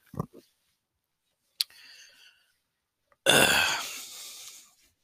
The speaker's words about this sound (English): Oh, as I burp into the fucking microphone again.